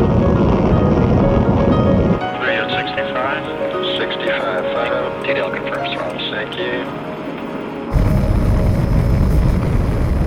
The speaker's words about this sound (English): T-minus 10, 9, 8, 7, 6. We have main engine start. 4, 3, 2, 1, and liftoff. Liftoff of the 25th Space Shuttle mission, and it has cleared the tower. Roger, roll, Challenger.